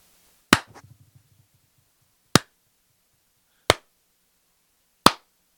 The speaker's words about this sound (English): Go ahead and clap your hands for me.